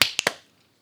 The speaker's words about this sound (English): Okay. Then clap sync. 3, 2, 1.